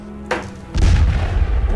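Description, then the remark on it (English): A cannon fires once with a sharp crack, then a deep, loud rumbling blast that fills the low end and keeps roaring for over a second. “I am gonna just stay here and I'm gonna shoot another round.”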